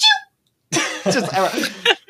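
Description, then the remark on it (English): A man imitates a loud, exaggerated sneeze with his voice, mimicking a grown man's terrible sneeze in the middle of a business meeting: a short voiced sound, a brief pause, then a long, harsh, strained burst that ends in a sharp final blast. “What about like at business meetings when someone has like a terrible sneeze, like you're in the middle of business, just hear like one like grown ass man go.”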